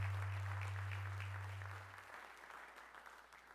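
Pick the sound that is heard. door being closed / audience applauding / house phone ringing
audience applauding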